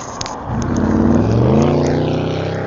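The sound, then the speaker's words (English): A very loud car engine roars up suddenly, its droning pitch climbing as it goes by, then holding steady for the rest of the moment with no one talking. “Very loud car and microphone drop.”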